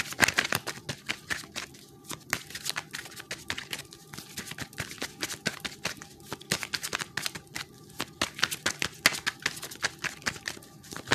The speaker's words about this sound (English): Okay. Shuffle three more times.